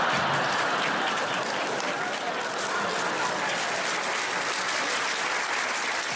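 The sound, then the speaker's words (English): An audience applauds steadily throughout, a dense, loud wash of many hands clapping at an even level with no pauses, lasting about six seconds. “Incredible that would get a round of applause.”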